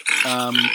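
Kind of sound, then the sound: animal, pig grunting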